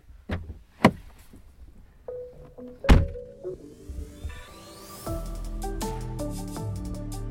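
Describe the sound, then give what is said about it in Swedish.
A person gets out of a car: a couple of solid car door thunks, separated by a couple of seconds, with faint shuffling between them; steady tonal music swells in behind and carries on alone. “Så jag hoppar ur bilen nu och nästa gång vi hörs så berättar jag helt enkelt.”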